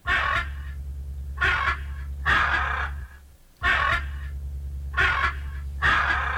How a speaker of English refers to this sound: Well, that is an ostrich, and they are large, flightless birds from Africa.